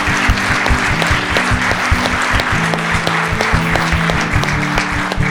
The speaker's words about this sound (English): So for those of y'all that are online, I want our congregation in the house Y'all give them a round of applause. Let them know. Let them know.